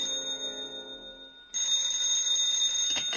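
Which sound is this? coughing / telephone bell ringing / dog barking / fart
telephone bell ringing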